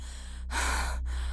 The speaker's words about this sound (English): Spitting, sputtering, and exhausted, I climbed out of the water and laid on my back, gasping for air.